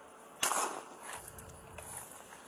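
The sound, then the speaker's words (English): A single sharp gunshot, fired by a police officer at a suspect at Campbell and Irene Vista, cracks out over a hissy police radio channel, followed by a fainter pop and lingering static noise. No one speaks. “Already exchanging gunfire.”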